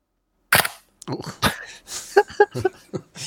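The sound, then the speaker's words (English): A loud large-format camera shutter fires with a sharp mechanical clack, followed by a second snap a second later, then people chuckle and talk. “they know when I'm taking a picture because here, let me play the shutter sound for you.”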